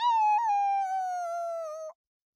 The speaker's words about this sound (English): They only made it a few steps before a creature howled behind them.